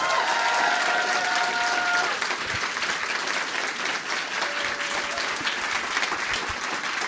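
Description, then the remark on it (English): A crowd applauds with dense, steady clapping that holds strong for the whole stretch. A faint whistle-like tone rings out briefly at the start, and another sounds later on. “Now I realize that wasn't you clapping in the back.”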